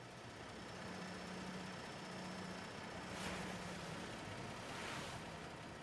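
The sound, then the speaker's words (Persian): A new car, just arrived at an old house, idles steadily with a low, even rumble under a wash of broad noise, and two brief whooshing swells rise and fade midway. No one speaks. “سهیل که موهایش کمی سفید شده با یک اتومبیل جدید از راه میرسد”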